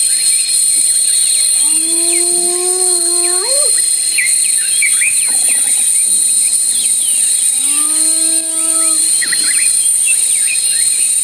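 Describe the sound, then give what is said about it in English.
Two drawn-out hyena yips, each a tonal call that slides upward in pitch over about two seconds, separated by a pause, over a steady high buzz of crickets and insects. “Oh, that's the hyena yip.”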